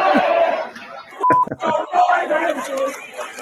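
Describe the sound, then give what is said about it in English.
A loud crowd chants an obscene slogan against President Joe Biden in unison while a short electronic censor beep cuts through the middle, with a brief second tone soon after, the chanting continuing around it. “I like how they beep it.”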